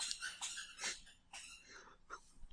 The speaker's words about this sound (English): What is squeaking? Oh, sorry, my dog found a toy.